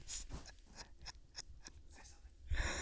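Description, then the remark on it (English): A dog named Waylon sniffs at the microphone in a quick, uneven series of short, breathy snuffles, followed by a louder rustling huff at the end. No one speaks. “You can hear him sniffing.”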